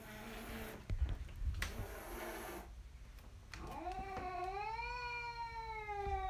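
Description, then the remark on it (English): A cat at a door lets out a long, drawn-out wailing meow that rises and wavers, loud, after a few seconds of muffled thumps and background noise. “But yeah, here, I want you to hear the cat again. It's really haunting. He's probably right at the door.”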